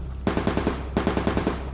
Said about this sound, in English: Wesley started towards the edge when the thunder of nearby gunfire sounded.